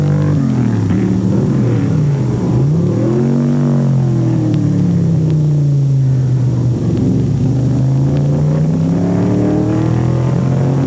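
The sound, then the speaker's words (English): Loud, continuous engine roar of race cars accelerating on a track, pitch rising and falling as gears shift and cars pass, with no talking; a Mustang leads the race with Donahue's Camaro in second. “In second now behind the Mustang is Donahue's Camaro, a fine car and a very aggressive driver.”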